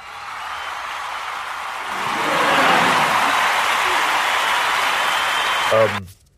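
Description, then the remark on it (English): A crowd claps steadily for several seconds, the dense patter swelling slightly midway with some voices mixed in, before cutting off abruptly at the end. “Why are you applauding?”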